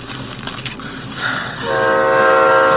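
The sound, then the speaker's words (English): The Empire Builder passenger train, about to depart after the final boarding call, rumbles at a station, then a loud, steady horn blasts and holds for over a second, ringing out over the low mechanical hum. No one speaks. “The train's about to leave.”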